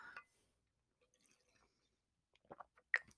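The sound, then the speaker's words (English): Quiet sounds of someone drinking water: a soft sip at the start, a pause, then a cluster of wet gulps and swallowing clicks near the end. “Or, like, you hear me drink water like I am currently right now about to do.”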